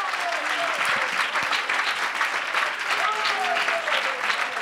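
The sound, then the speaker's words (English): A church audience claps hands in sustained, dense applause in praise of the Lord, with scattered voices calling out underneath the steady wash of clapping. “Give the Lord another real good hand clap of praise.”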